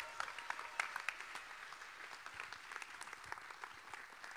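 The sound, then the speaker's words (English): An audience at a church service claps and shouts for the Lord in a dense, steady burst of applause lasting several seconds, with a few voices calling out near the start. The clapping stays fairly even in loudness throughout. “Give the Lord a clap and a shout like you got energy.”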